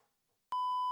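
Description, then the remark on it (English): A loud, steady censor bleep over a swear word cuts in abruptly halfway through, a single sustained high-pitched tone that holds unbroken to the end, following a brief faint murmur of voice. “That's a cuss word to me. I don't say that word.”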